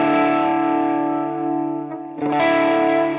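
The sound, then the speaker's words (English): A distorted electric guitar plays through a Marshall number 7 amp profile with a bit of reverb and a bit of delay, the bass turned down: a loud sustained chord rings out, dips briefly, then a fresh strum swells back in, with no talking. “Okay, so this is the Marshall number 7 profile, bit of reverb, bit of delay.”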